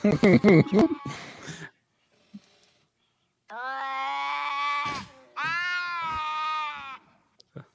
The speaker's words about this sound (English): Is that the cat sex? No, I have that on my phone so I can make the dogs get riled up.